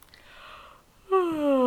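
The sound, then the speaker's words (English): A natural yawn: a long breathy intake of air that swells into a loud voiced groan, sliding gradually downward in pitch and still sounding at the end. “That was a natural yawn, which I'm not going to edit out.”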